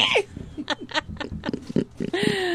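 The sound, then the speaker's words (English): A person imitates a pig, letting out a quick series of snorting grunts in a loose rhythm, fairly loud, ending in a drawn-out squealing snort. “Did you just do a pig nose while you're in pig noise?”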